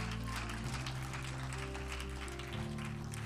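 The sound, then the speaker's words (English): An audience at a worship service claps and shouts in praise of the Lord in a steady, dense wash of noise, while sustained organ-like chords hold underneath and shift pitch partway through. “Come on, give him a hand clap and a shout.”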